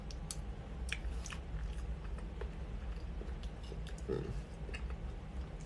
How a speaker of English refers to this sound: I'm munching on an alkaline berry mango porridge. Very delicious, very healthy.